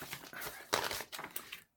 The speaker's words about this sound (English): Shuffling through some papers.